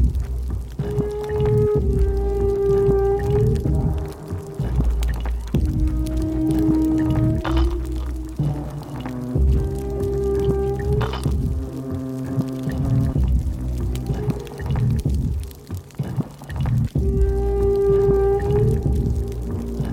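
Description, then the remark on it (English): Killer whale calls on a music album track ring out in a repeating series of rising, wavering harmonic whistles and squeals, roughly every few seconds, over a steady low rumbling backdrop, with no one speaking. “And this is the track that contains the sound of those killer whales that you mentioned earlier.”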